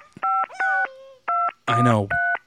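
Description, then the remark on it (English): Four crisp, steady telephone keypad tones beep one after another at an uneven pace as a phone is dialed to call a cab, with a short burst of voice slipping in between the last two presses. “Oh, let me get my phone out. Better call a cab.”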